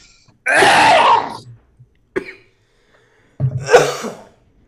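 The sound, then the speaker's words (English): A person coughs hard and raspy after eating a very spicy chip, a long harsh burst followed by a short catch and another rough cough a few seconds later, with strained breathing between. “I feel like I'm one more cough away from vomiting.”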